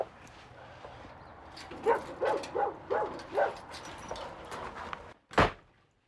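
A pink key works in a lock with soft rattling, then a front door is unlocked and pushed open with a sharp burst, while a dog yips several times in quick succession.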